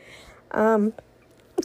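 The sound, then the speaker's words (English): A single loud sneeze with a sharp breathy onset and a short voiced burst, followed by a couple of faint brief sounds. “got a sneeze.”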